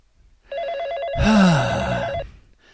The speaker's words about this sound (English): I forgot that this phone thing was on. Okay, let me just take this call real quick.